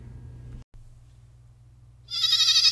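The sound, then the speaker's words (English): A low rumbling hum runs for a couple of seconds, then a single loud, wavering goat bleat sound effect breaks in near the end, sharp and nasal. “So, man, let's move right along to the goats of the week.”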